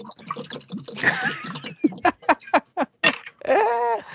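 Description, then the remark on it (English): Someone drinking water right into a microphone: a muffled wet pour, then a quick run of loud gulping swallows, followed by a voiced exhale. No words are spoken. “I gotta wet my whistle.”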